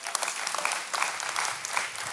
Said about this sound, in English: And can I tell you this? Come on, you clap your hands for that.